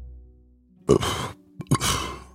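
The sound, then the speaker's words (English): A short, throaty belch after drinking coffee, followed by a second, briefer croaking burst about a second later. Both are moderately loud and rough-textured, with no talking. “That's coffee sort of belch.”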